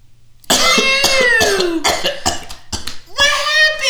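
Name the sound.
coughing fit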